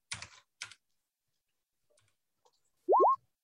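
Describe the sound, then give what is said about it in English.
Three dice clatter in two short, sharp rattling bursts, followed after a quiet pause by two quick rising electronic boing-like chirps. No one speaks. “I'm going to roll 3 dice.”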